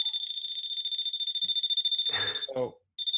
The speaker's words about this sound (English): you can use these little pens too that electrical contractors use. So when you have an unshielded thing. See how it's beeping?